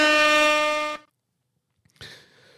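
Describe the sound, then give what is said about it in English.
A single loud, blaring air horn blast lasts about a second and cuts off abruptly, followed by a brief silence and then a muffled burst of noise. “Where's the air horn?”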